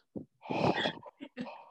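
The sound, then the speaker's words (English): Heavy open-mouth breathing, a few raspy, uneven breaths and gasps in quick succession, loud and deliberately exaggerated, with no talking. “You're going to hear my, like, open mouth breathing.”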